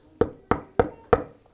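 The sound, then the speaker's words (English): Four firm knocks on a door in a steady, even rhythm, clear with a short resonant thud on each strike, no voices. “And then God knocks on his heart.”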